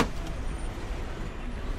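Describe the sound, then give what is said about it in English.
A battered 2005 Nissan car's engine hums steadily as it sets off for a drive from a busy street, a low continuous rumble with a brief clunk near the start and another at the end. No one speaks. “He owns a battered 2005 Nissan, and he invites me to go for a drive.”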